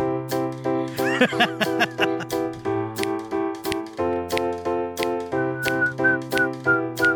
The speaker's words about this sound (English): Let's get some whistling in there.